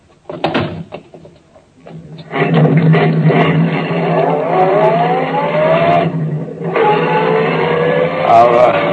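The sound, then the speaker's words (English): A car door thuds shut, then an engine catches and roars up loudly, its pitch climbing as the car pulls away, with a brief lull before the revving continues steadily. “get in the car. I'll drive”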